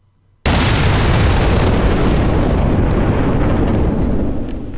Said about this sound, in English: The force of this volcanic explosion was so vast it can barely be measured. I've tried to estimate the equivalent force of this eruption in terms of megatons.